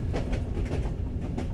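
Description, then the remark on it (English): A train clatters along the rails with a steady low rumble and a repeating clickety-clack of wheels over track joints, loud, with no voices. “Can't you turn off your laugh switch and just make it a regular train ride?”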